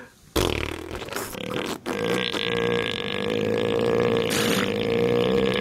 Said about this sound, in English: It's got hooting boobook owls, revving motorbike frogs, and my favourite, fluffing elephant seals.